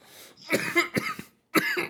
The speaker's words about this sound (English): I'm coughing.